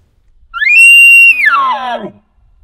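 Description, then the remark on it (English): A single elk bugle blown on a diaphragm call: a loud, high whistling note that climbs, holds steady, then breaks down into a lower, raspy, grunting tail. No talking over it. “Well, guys, that's kind of a wrap just on talking about diaphragm sounds that we use for elk calling.”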